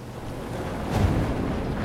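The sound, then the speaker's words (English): A ship pushes through a field of broken sea ice, knocking against it as pieces flip over and water gushes over them: a steady rush of churning water and wind noise, with one dull, heavier surge about halfway through. No voices. “As we pass, our ship knocks against the ice. Pieces flip over, and water gushes over top of them.”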